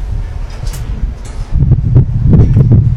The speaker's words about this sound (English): Windy afternoon here, wind blowing in towards third base.